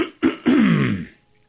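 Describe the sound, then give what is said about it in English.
A man, a detective, clears his throat: two short rough bursts followed by a longer, drawn-out gravelly rasp that slides downward in pitch and fades. No talking. “The detective cleared his throat.”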